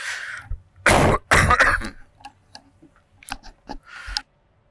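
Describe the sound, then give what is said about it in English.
A sneeze, two loud explosive bursts back to back, each a harsh noisy blast, followed by a few faint clicks and small rustles, with no talking. “Bless you.”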